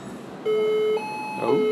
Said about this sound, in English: Apparently, those massage chairs are alarmed.